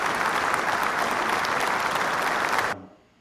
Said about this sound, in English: And after that round of applause, I want everybody to say thank you.